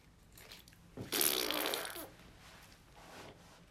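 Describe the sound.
A single sputtering raspberry lasts about a second, a wet buzzy fart sound blown with a person's lips, standing out clearly against a quiet background.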